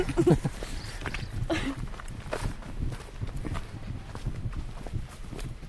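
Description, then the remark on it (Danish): Hooves clip-clop steadily as horses walk past at a castle, a continuous uneven rhythm of knocks over faint outdoor background noise. “Ja, det er slottet her. Hestene.”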